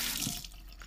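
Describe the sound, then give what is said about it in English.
A tap runs while someone brushes their teeth with a Colgate toothbrush, a steady, hissing rush of water that starts strong and eases to a softer, splashing flow. No one speaks. “So I will just be brushing my teeth.”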